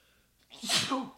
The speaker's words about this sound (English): Wow, I think that's the first sneeze on air. That's so cool.